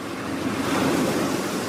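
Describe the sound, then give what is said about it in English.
Ocean waves wash and churn steadily around a 55-foot-long sailing boat on a voyage from the Falklands to South Georgia in dull but fair weather, a continuous broad rushing surf sound with a faint windy hiss, even in loudness, with no voices. “It's a 55-foot-long boat called the Pelagic, and it will travel through an ocean where waves can rise to the same height.”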